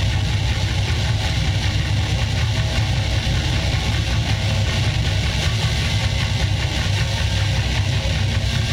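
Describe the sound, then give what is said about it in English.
A loud, dense, chugging drum beat and riff pounds along steadily without a break, its thick low-end rumble and noisy grind sounding almost like an engine, with no voices. “Because it is the most addicting drum beat I have heard in so long.”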